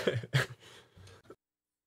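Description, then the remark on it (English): Two sharp coughs burst out in quick succession as a person's laugh turns into a cough, trailing into a rough, throaty rasp that lasts about a second before the sound cuts off to silence. “I started coughing. My laugh turned into a cough.”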